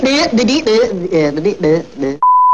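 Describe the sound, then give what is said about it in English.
A person talks for about two seconds, then a single short, steady electronic beep sounds on its own at the end, clear and fairly loud, like a censor bleep. “Beep.”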